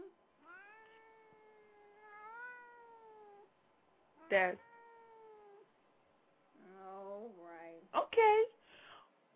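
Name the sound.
cat meowing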